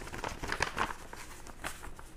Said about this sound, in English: So, in any case, it's a brown envelope, airmail. And we're going to, I don't need any tools to open this, I don't think. It's just a peel open this envelope here. Okay. Sliding it out.